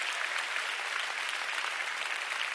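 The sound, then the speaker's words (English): A large crowd applauds steadily, giving God a big round of applause, a dense wash of many hands clapping at once with no breaks, sustained and fairly loud throughout, with no voices standing out. “Come on, let's give God a big round of applause.”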